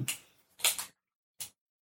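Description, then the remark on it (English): A gun being handled, cocked and uncocked: a few sharp, dry mechanical clacks in an uneven rhythm, a pair close together then a lone click after a pause, with no voices. “Also, sorry for the audience at home with the clicking sound,”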